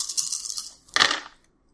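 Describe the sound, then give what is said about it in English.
Small hard dice rattle briskly for under a second, then clatter loudly onto a table and quickly settle, rolled in a tabletop role-playing game for a Wits plus Composure check, with no voices. “These are not bad rolls for me, people. You got 5-4 dice.”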